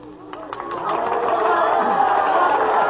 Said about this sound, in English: Anyway, in my dream, I heard cheering and applause in the distance. The mist suddenly disappeared, and I was standing on a huge stage. I had just made a speech. The cheers and applause were all for me.